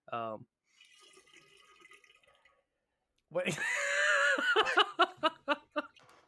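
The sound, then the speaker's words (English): Water spills with a soft, brief, faint trickling splash lasting a second or two, after a short vocal sound and followed by loud, bursting laughter. “No, I spilled water.”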